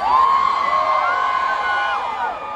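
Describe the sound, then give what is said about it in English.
A huge concert crowd of around 50,000 people at the Sueños festival roars and cheers continuously, thousands of voices blending into a loud, sustained wash with high whoops rising and falling above it. “Around 50,000 people were in the crowd”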